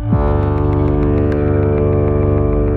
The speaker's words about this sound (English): Low-frequency sounds have longer sound waves. This means they can travel farther without bumping into as many particles and losing energy. This is why we use low frequencies anytime we need a sound to travel as far as possible, like a foghorn.